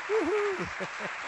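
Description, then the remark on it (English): A roaring crowd cheers over a steady wash of applause for Rudy Ruettiger, with a loud whooping call at the start and a few rhythmic thumps underneath. “And then you can say, let's give Rudy a roaring round of applause.”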